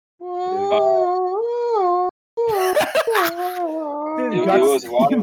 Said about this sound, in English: You know what we got to go out on? We got to go out on sex noises from our boy that just had sex.